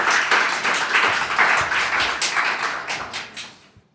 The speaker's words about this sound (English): So she might not be physically in the room, but I would love you to applaud her anyway.